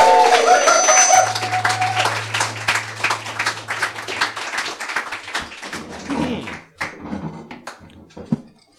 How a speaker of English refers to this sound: All right, without any further ado or any more of me, please give a big round of applause for our players tonight. Big round of applause for the players!